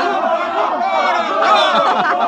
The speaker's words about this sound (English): Bravo, Bravo! Well, what is it? What did they say? They're cheering for the bull. Here he comes.